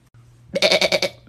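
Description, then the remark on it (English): A single wavering sheep bleat at a zoo, loud, pulsing rapidly for about half a second over a low steady hum. “They got sheep here.”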